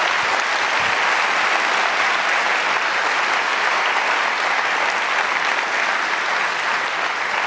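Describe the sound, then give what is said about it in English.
Sustained applause from a large audience, a dense, steady wash of clapping at a constant loud level throughout, with no voices rising above it. The applause is for Dr. Frank Turek as he makes his way to the book table. “Give it up for Dr.”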